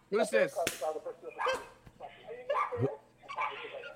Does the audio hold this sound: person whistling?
no